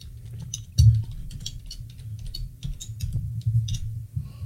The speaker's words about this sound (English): Just typing it in, are you? Yep, it is.